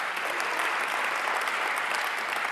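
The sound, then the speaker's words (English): Steady applause from an audience as charitable donations to shelters are announced: a dense, continuous wash of many hands clapping at once, fairly loud and even throughout, with no voices rising above it. “This will go on for a little bit so you can hold your applause.”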